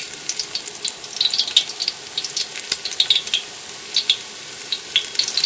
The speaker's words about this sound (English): The sound and smell of boulettes sizzling away.